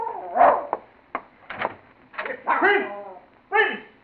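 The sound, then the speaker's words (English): A dog named Prince barks repeatedly in short, irregular bursts, with a few longer, drawn-out howling yelps mixed in against a quiet background. “Hey, that bastard dog, sir. He'd be off digging under Master's cherry tree again.”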